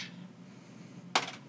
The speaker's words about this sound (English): A high roll keeps the dice. Very good. Roll a d6. Okay.